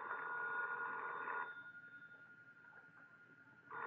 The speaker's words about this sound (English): That's your phone